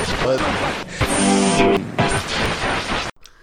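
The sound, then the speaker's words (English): A person with a tickle in the throat coughs several times in loud, harsh bursts about a second apart, with raspy voiced noise between them, ending abruptly in near silence. “I'm going to have to edit that cough out now because I...”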